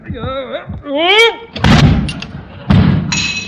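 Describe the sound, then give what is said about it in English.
Strained grunting voices as a heavy bust of Caesar is lifted toward its pedestal, then the bust crashes to the floor with a loud thud, and another heavy impact follows a second later. “Set Caesar up in the next alley. Mr. Conklin's got another shot coming.”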